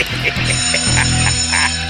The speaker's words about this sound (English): The bell is for me, not for you.